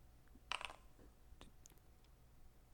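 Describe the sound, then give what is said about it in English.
Dice rattle and clatter in a quick burst of sharp clicks, followed by a few lighter, scattered taps as they settle, coming up a 7. The sound is quiet, with no voices. “Did you hear the dice rolling? I heard them rolling.”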